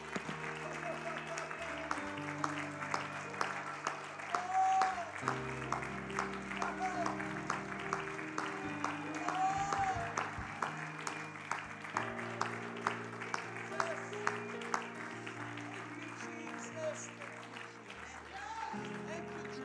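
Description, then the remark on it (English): An audience in a church claps their hands steadily for about twenty seconds, a dense run of sharp hand claps over sustained keyboard or organ chords and indistinct voices. “Can we really clap our hands like he's in this place, right?”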